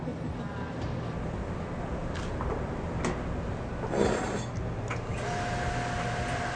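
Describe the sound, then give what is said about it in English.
A 10-kilowatt industrial microwave dryer with a rotating load runs with a steady, dense mechanical whir and hum, broken by a few sharp clicks and clunks, while a faint high steady tone appears near the end. “This machine is 10 kilowatt, almost like a 10 household microwave.”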